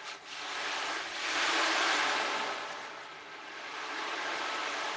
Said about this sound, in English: The sound of the ocean sounds like the breathing and the speech of our mothers when we are inside the womb. So that's one reason they say why it's so relaxing to hear ocean sounds. Because it brings us back in utero to our mother's womb.